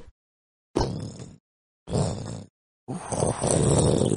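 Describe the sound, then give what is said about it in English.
A voice imitates a dragon heard in the distance, with three rough, growling roars separated by brief silences, each a loud guttural burst, the last one longest and strongest. “We can talk to the dragon.”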